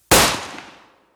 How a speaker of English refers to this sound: Rolling his eyes, Putz opens up the desk drawer, pulls out a gun, and fires into the box.